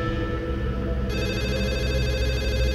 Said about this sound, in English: And that's when the phone rings. Not mine, not the one I have in my hand, but the landline phone.